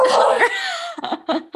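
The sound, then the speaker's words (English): A small female dog barks as a guard dog at people walking in the hall: one drawn-out, wavering yowl followed by a couple of short, sharp yaps in quick succession, fairly loud with no one talking. “Brave, stop being a guard dog.”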